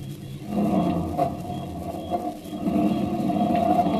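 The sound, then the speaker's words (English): A driver re-enters a car stopped by a vacant lot and speeds away: the engine turns over and revs, its low rumbling drone building steadily and growing louder toward the end as the vehicle pulls off. No voices are heard. “Then, when the task is completed, the driver re-enters the car.”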